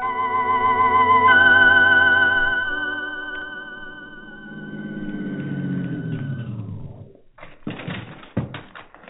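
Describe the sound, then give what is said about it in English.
A car engine hums steadily as the car pulls up near a shack, then its pitch sinks as it slows and cuts out, followed by a few sharp clunks and rattles in the quiet. No one speaks. “Whoever is in that shack can't be doing any harm, or they'd have run when they heard the car.”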